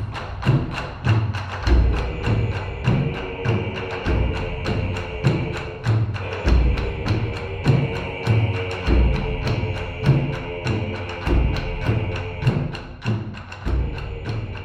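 Japanese-style pastiche film score music from Wes Anderson's animated puppet film Isle of Dogs, driven by steady, pounding low drum hits in a repeating rhythm, with sustained higher tones and bright percussive accents layered on top, no voices.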